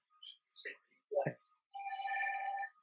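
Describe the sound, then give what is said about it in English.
A telephone rings with one sustained, warbling electronic trill near the end, loud, after a few brief, muffled voice sounds. “Phone is off,”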